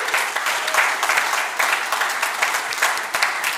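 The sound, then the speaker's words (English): A crowd applauds steadily, a dense wash of many hands clapping at once with no gaps, holding a fairly loud, even level throughout. “You can clap.”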